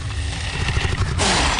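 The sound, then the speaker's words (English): A loud sound from a huntsman creature: a low, rumbling growl that breaks into a harsh, breathy hiss at the end, with no voices present. “The huntsman didn't roar in fury. He didn't scream. He hissed.”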